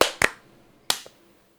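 A few sharp, bright hand claps with an uneven gap between them, each a crisp snap that dies away quickly into near silence, used as a sync marker. No voices are heard.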